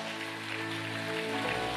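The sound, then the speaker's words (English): An audience claps to give God glory, in a dense, steady wash of applause that holds its loudness throughout, with sustained low musical tones humming underneath. “Come on, clap like God's word is powerful.”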